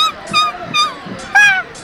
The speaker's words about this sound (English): At ease, it's just a random seagull. My apologies. A very lovely seagull.